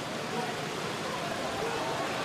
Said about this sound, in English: As the rain continues to fall, you can hear an effects mic.